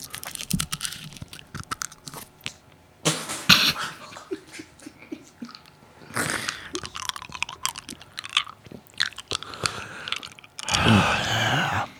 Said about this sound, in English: and you can hear the cough on mic because of the quality of the equipment that we have now. So, good, very discreetly put in a cough drop.